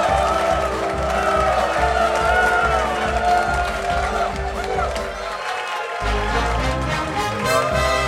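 A live audience applauds and cheers, a dense, steady roar that stays loud for the whole stretch, with a strong low rumble underneath that briefly drops out near the end.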